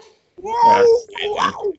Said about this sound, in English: I like your yawn